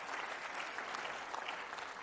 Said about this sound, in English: Come on, give a clap offering of praise to the Lord.